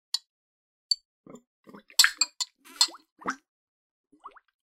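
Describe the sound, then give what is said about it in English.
Irregular clinks and clatters of ice knocking against glass as a home-brewed drink poured over ice is stirred with a glass straw, mixed with small liquid plops and swishes, with no one talking. “Like, wait, I'm going to stir mine around. Glass straws.”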